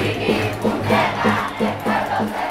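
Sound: protest crowd chanting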